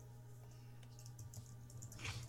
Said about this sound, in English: Also, someone's keyboard's loud.